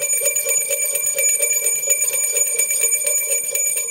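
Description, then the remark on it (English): A bright bell rings steadily and rapidly for a few seconds, its metallic tone sustained and fairly loud, with no talking over it. “It's Two Bell Morning.”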